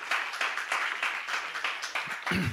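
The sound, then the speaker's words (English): An audience claps hands together in praise to God during a morning church service, steady, sustained applause, a dense crackling wash that swells and dips in waves, with a low voice faintly joining near the end. “Give God a hand clap of praise for that this morning.”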